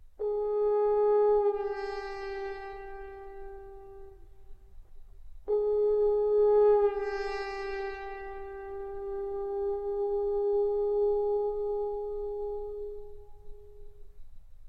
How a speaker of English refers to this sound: The player changes the note by pushing his hand higher up into the bell of the instrument. The sound becomes rasping, crude.